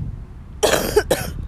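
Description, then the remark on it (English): Two quick, harsh coughs, the first slightly longer, separated by a brief pause, after a moment of quiet room noise, from a person with a summer cold. “But excuse me if I cough also. I have a little summer cold.”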